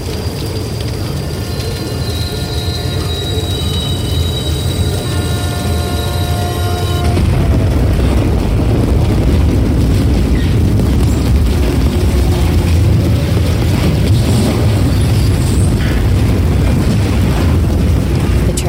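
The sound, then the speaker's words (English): High, sustained metallic squealing over a heavy rumble, then a sudden loud roaring crash of grinding metal and debris that continues at full force, overwhelming, like a train wreck: a train travelling at 50 miles per hour crashes and its front engine splits in two, with tank cars of flammable liquid chemicals behind it. “Into me at 50 miles per hour, and the engine up front cleaves clean in two, a great squealing of metal and broken things trumpeting its death.”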